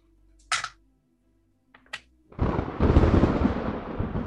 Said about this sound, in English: The clouds above you get all dark and stormy, and the lightning crashes again.